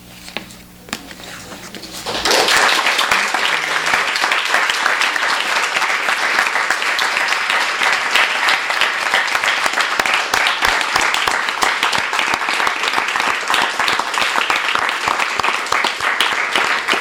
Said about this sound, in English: They're applauding for you.